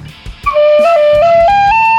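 A bright, steady Celtic whistle melody rises step by step through sustained notes, loud, with a few faint knocks before it begins.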